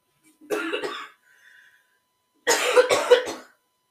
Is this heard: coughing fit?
yes